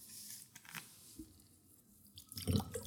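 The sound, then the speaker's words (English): Water is poured into a glass, a soft trickling that swells into a louder, splashing gurgle toward the end, with no one talking. “Do you want some more water?”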